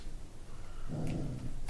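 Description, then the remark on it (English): A low, rumbling growl from a female dog lying on her back rises after a quiet start and holds for under a second before trailing off, fairly soft, with no talking. “What is the dog? What is she doing? She's just laying on her back, growling.”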